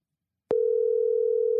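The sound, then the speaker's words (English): After a short silence, a telephone dial tone switches on abruptly as a phone call is placed, holding as one steady, unbroken hum, fairly loud, with no voices. “Hey, can I make a phone call real quick?”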